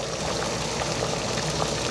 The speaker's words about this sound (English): I love the boiling sound of the hot pot.